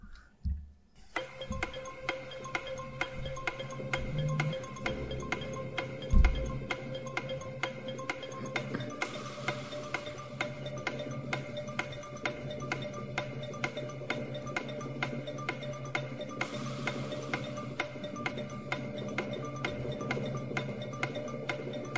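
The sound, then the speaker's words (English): A game show countdown clock theme plays on its own, steady musical tones over a regular ticking pulse that carries on evenly at moderate volume for about twenty seconds. “Start the clock.”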